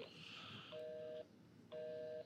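Two steady electronic phone-call tones sound in a row, each about half a second with a pause between, a little thin, played from a phone handset held up to the microphone while calling a number.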